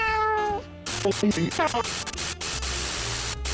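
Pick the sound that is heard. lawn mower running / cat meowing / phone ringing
cat meowing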